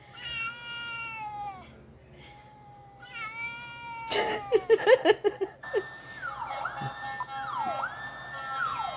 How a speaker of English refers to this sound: He doesn't like sirens, I forgot. Oh. He said, please stop that. That dog hated that.